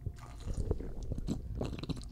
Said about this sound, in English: I have a little drinky real quick. Okay. Wet the whistle.